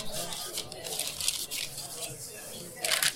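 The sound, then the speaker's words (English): Crinkling and rustling of a brown paper bag as lion's mane mushrooms are dropped inside, in a few uneven bursts with a louder crackle near the end and faint background voices. “And let's go ahead and put your lion's mane in a nice brown paper bag.”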